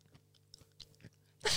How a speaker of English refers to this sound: Are you doing ASMR chewing? Yeah. Go do it.